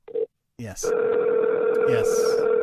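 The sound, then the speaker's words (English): A phone line ringback tone on an outgoing call: a brief beep, then a steady, fairly loud electronic tone that holds to the end, with short bits of voices over it. “Well, he can't hear us, you know, when it's ringing.”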